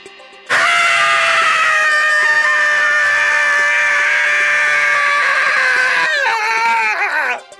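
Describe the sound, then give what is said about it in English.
A single loud, sustained scream rings out for several seconds at a steady, piercing pitch, then breaks into a wavering, faltering cry before cutting off. No talking is heard. “Our scientists would like all of our listeners to analyze with them that scream of terror.”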